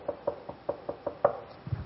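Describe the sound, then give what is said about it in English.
A quick run of about eight light, evenly spaced knocks on a wooden door by a seven-year-old girl, soft and tentative, with no voices. “And he said, I heard this little timid knock.”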